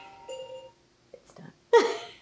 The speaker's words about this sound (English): That's your, sorry. It's your alarm. My alarm.